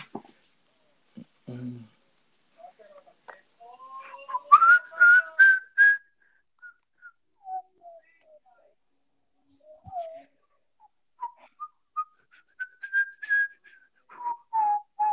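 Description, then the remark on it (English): A person whistles a meandering tune, with sliding pitches and short bursts of notes broken by brief pauses, fairly loud and unaccompanied. “Am I breaking your ears again by whistling?”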